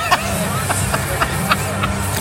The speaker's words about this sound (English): You'd think there was 60,000. Yeah, they're cheering really hard. Thoroughly deserved.